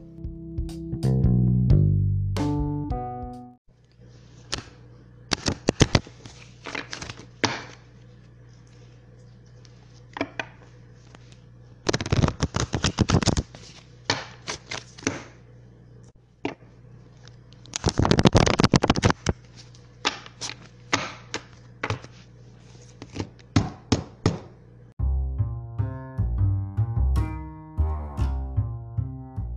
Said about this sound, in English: Alright guys, so I have shuffled the cards 11 times. I don't know why I had to be 11. I started off doing 7 and then I shuffled it an 8th time and thought, might as well make it 11.